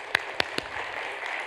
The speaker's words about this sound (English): Daisy, thank you so much. Give Daisy a round of applause.